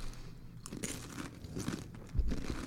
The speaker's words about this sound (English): I'm going to crunch right in there. It was a very ASMR episode of the year.